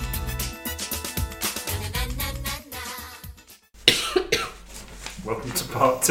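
A short musical passage fades out, then a few harsh, close coughs break in, loud and rough, with some muffled background noise around them.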